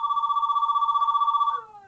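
A phone rings with a steady, high, rapidly warbling electronic trill that holds for about a second and a half before cutting off and trailing away.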